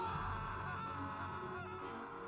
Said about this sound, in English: One after the next, his hounds took turns leaping onto him, until the whole pack, united, sank their teeth into his flesh. Ouch. In response to which, he gave a wailing scream.